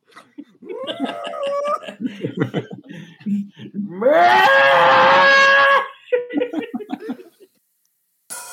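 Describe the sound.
A person imitates a cow with one loud, drawn-out moo that rises in pitch and holds for about two seconds, with brief murmured vocal sounds before and after it.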